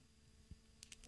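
A pencil snapped in half on air during a radio show: a soft dull thump followed by a quick series of three sharp, dry, high cracks as the wood splinters. The sounds are faint, with no talking.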